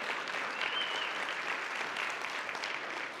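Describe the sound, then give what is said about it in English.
A church audience claps steadily in a dense, sustained round of applause for the women present at a morning service, many hands blending into a bright, even wash of noise with no voices standing out. “And if we could just give all the ladies a round of applause this morning for just being awesome.”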